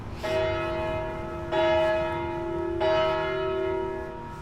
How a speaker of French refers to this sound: Il supporte les coups de cloche aussi. Il loge dans le clocher, donc...